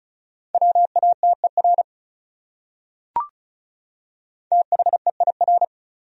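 Rapid Morse code beeps at 35 words per minute, spelling one of the top 100 words: a steady mid-pitched tone keyed into quick dots and dashes, in two short bursts split by a single sharp click and a pause of silence.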